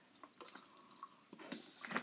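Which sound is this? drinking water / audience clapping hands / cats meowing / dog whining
drinking water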